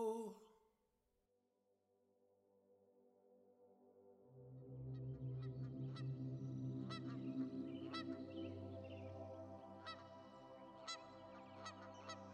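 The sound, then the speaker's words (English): A flock of geese honks in a dense, overlapping chorus that swells in after a few seconds of near silence, then continues steadily, with sharper individual calls punctuating the din. “Not all geese migrate, but those that do like to return to the place they were born.”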